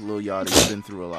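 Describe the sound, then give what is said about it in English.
A single sharp, loud sneeze bursts out in the middle of a man's speech while a track is being played and reviewed, a brief hissy blast that briefly drowns his voice before he keeps talking. “Bless you, man. Oh, thank you. Sneezed on the track.”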